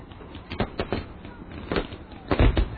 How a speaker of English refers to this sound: I don't even know what the sound effect is. It's just labeled F. Fireworks? Maybe. Yeah, we wanted fireworks for something. That sounds really bad.